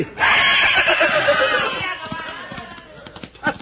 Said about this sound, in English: A horse! A horse! And he scared them off.